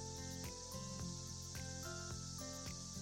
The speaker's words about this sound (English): Do you hear them? Hear what? Cicadas.